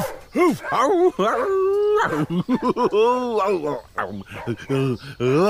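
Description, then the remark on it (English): A dog named Pyla howls and yelps, a run of loud, wavering cries that rise and fall in pitch with short choppy barks between them. “It's my dog, Pyla.”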